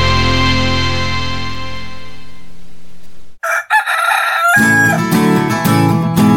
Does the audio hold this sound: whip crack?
no